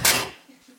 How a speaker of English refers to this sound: That's the bug zapper.